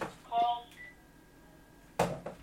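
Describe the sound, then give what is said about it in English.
A landline telephone rings with a short burst of electronic tones, then a thin steady tone lingers before a sharp noise cuts in; the incoming call is from area code 415. Faint muffled voices sit in the background. “Why do we have a landline? We never had a landline in this.”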